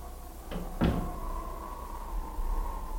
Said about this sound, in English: The doors go shutting far in the distance, gently knocking like the pulse of a heart.